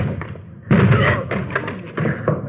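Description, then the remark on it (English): A locked door being forced open by police officers: a heavy, booming thud followed by several more rough impacts and rattling bangs over about two seconds, loud, like a door being rammed and giving way. “Let's hit it.”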